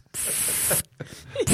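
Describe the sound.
An aerosol can sprays in a long, steady hissing burst, then sputters briefly before a second short blast begins. The sound is fairly loud, with no talking.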